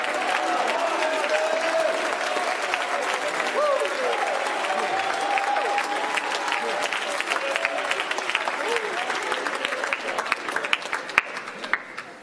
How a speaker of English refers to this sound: Oh, I feel like you ought to clap your hands and lift your voice with the shout of certainty.